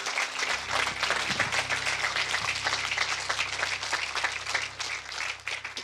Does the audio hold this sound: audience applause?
yes